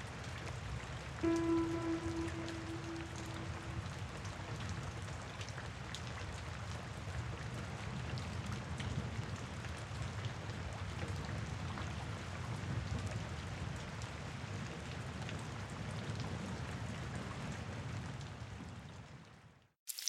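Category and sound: nature, rain ambience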